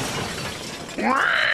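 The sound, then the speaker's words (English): A speeding shiny red car swerves off the road and crashes into a ditch, smashing its front: a rushing, noisy approach, then a sudden loud impact with shattering and a sharp squealing tone, brief. “So he turned the wheel and ended up driving into a ditch.”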